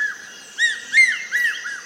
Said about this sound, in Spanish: Ahora, un silbido rítmico atrae la atención hacia un gran rapaz.